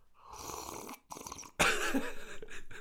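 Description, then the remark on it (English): Loud, airy slurping of coffee in a few sips: a long noisy draw, a short pause, another brief slurp, then a louder, longer sip with gurgling texture. No talking. “Am I sipping my coffee too loudly?”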